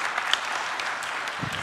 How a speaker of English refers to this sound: So let's give him a clap, everybody. Good job, bro.